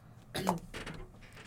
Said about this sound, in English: is taking a sip of water, I'm only wet his whistle.